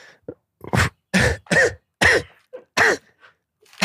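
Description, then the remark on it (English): A series of harsh coughs, about six bursts in uneven rhythm, with short throat-clearing rasps between them and no talking. “I used your coughs as a cover for me to pick up the crinkly ice.”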